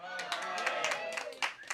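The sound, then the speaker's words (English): A small live crowd at an outdoor Sunday sermon in wine country, South Temecula, calls out a greeting together, with voices overlapping, while a few scattered, uneven claps break through at a moderate level. “And we have our live crowd. Live crowd, say hi.”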